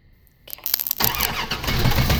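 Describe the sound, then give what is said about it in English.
A hotwired car with a solenoid starter cranks with a few sputtering bursts, then catches and roars into a steady, loud idle. “I'm hotwiring Dad's car.”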